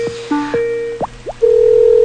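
An outgoing Skype call ringing tone: a few short electronic blips and swooping chirps, then a steady, unbroken tone that holds clearly to the end, with no voices.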